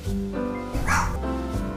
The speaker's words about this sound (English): So fucking annoying, dude. I swear to God, it could be a fucking bird. It could be literally just a car driving on the main fucking road. Like, I don't understand. Like, they're the most neurotic fucking anxiety-ridden dogs.